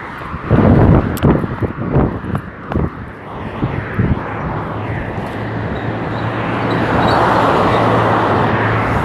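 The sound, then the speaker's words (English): Fast cars roar past at about 80 miles an hour on a busy freeway in Mexico while a pedestrian waits in the middle to cross, a constant rushing drone that swells louder toward the end as a vehicle closes in, with gusty wind buffeting the microphone early on. “Those are the cars passing by. They're like going, oh shit, I'm scared. They're going like 80 miles an hour.”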